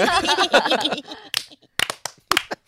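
Voices cheer and talk briefly, then a few people clap in sparse, uneven bursts: a handful of sharp, bright claps scattered over the last second and a half.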